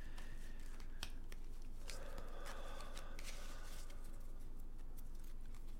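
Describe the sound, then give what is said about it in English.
Tarot cards are shuffled for a Scorpio reading, a soft papery riffling with quick scattered flicks and taps over a few seconds, fairly quiet, with no voices. “As I shuffle, Scorpio, go ahead and take a deep breath with me.”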